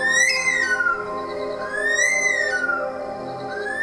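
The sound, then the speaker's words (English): A curlew calls alone in a series of loud, rising then falling whistles, each long note swooping upward and trailing off before the next begins, about three times in a row. “In Australian folklore, the curlew is said to represent a bad omen or death because its call sounds like a screaming woman or a baby.”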